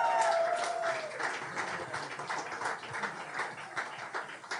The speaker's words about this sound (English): He's a shy clap, gentleman. Clap, make some noise. Come on.